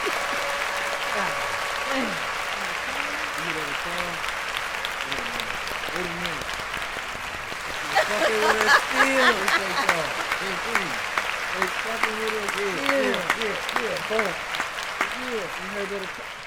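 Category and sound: crowd, long applause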